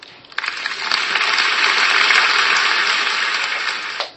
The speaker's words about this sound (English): Okay, big golf clap there.